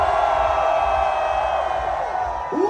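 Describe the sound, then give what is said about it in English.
A festival crowd in DC screams and cheers on a count of three for a photo, one loud, continuous roar, many high voices blending together and holding steady for the whole stretch. “Raise your hands and scream.”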